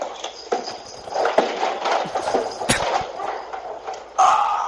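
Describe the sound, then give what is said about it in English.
A person falling up the stairs, blamed on a cat: a clumsy tumble, a scramble of uneven thumps, scuffs and knocks over several seconds, ending in a louder crash, with no voices. “audio of him falling up the stairs”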